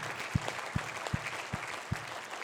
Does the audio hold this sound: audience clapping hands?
yes